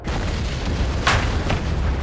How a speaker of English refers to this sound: Somewhere deep inside the woods came an explosion that rocked the earth and sent birds flying into the sky.